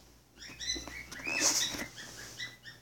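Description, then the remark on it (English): A single small pet bird chirps and squeaks in quick, repeated bursts, not loud, calling because it wants attention, with no one talking over it. “If you guys can hear that, that's the birds. Well, the one birdie.”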